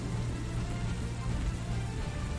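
Steady rain falls in a continuous staticky hiss, filling the space at an even level with a low rumble underneath and no voices.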